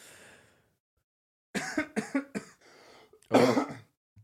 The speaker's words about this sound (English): With nervous coughing.